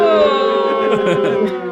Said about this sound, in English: I've been publicly booed for the first time. I'm honored.